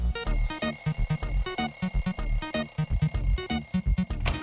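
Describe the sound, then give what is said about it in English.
A loud electronic alarm clock set for 5 o'clock goes off, a repeating melodic chime pattern over steady pulsing bass notes, playing continuously with no voices. “Here, Irene, set an alarm for 5 o'clock”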